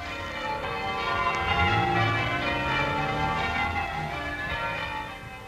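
Church bells peal together in a loud, continuous wash of overlapping ringing tones, steady throughout with no voices, fading slightly at the very end.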